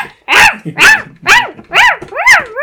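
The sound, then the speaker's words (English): A child's voice imitates a puppy barking, giving five loud, evenly spaced yips and woofs in quick succession, with no other talking. “You like to bark at people?”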